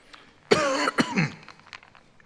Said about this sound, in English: I'm going to have to take some for my throat, because I'm getting all worked up and hot and bothered, and I'm going to cough.